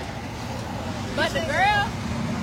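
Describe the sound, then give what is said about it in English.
Steady low rumble of road traffic flowing on Skyland Boulevard, with a vehicle swelling louder midway and a brief high, wavering whine rising over the continuous roadway noise. “Traffic is still flowing on Skyland Boulevard, but if you're leaving the office or lunch break or anything of the sort anytime soon, avoid the area if you can.”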